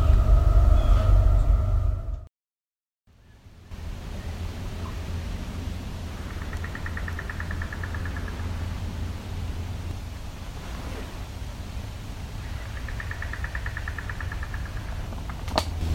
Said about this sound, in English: I think these might be young towhee, but we also got a train coming, so it's going to be loud.